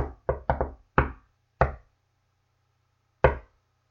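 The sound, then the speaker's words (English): Sharp knocks on a wall tap out the "shave and a haircut" rhythm: a quick burst of six raps, a long pause, then one lone final knock. Clear, with no talking. “If you're familiar with the shave and a haircut two bits, which is, let's see if I can do it on this wall.”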